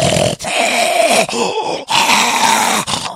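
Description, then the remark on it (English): A person imitates an ugly sleeping dog's labored snoring from a dog that cannot breathe properly, producing a series of loud, rasping, strained breaths with short gaps between them, with no other talking. “there's this real fuck ugly dog that's asleep, and it's going...”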